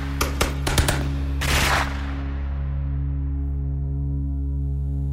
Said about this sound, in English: And then, you know, out the blue, a bunch of shots break out.